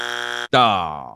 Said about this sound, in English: We're going to pull in the buzzer for this one.